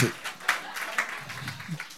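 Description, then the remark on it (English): A smattering of audience clapping during a sermon, given at the preacher's request, soft and irregular, with a few sharper claps standing out from the patter and faint voices murmuring underneath. “Clap for me.”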